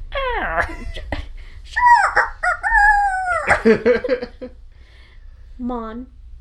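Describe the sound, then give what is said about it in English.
A person's voice mimics a rooster's crow with stretched, wavering cock-a-doodle-doo calls in several quick, loud bursts, then a brief softer call after a pause. “I like how you almost said it like a rooster crow.”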